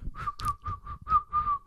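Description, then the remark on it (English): A person whistles one steady, shrill note imitating a water captain's whistle blowing the command to come ashore, broken into several quick breathy pulses over under two seconds, fairly loud with no talking. “And the water captain's got his whistle. Yeah. And he's about to blow the command to come ashore.”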